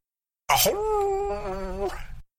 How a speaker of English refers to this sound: suddenly family cats tossed back their mangy heads and began to bay like wolves beneath a swollen moon.